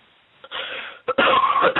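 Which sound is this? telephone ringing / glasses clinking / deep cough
deep cough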